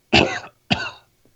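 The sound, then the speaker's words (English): Two sharp coughs in quick succession, each a loud burst that tails off after about a third of a second, with a faint breath or rustle just after; a person coughing at a restaurant table while waiting for water. “And then as I'm waiting for my water to show up from the hose that has to be sprayed from 6 feet away, the wait stewardess comes up and tries to shoot hose water into your glasses because she can't come up to the table, and I cough.”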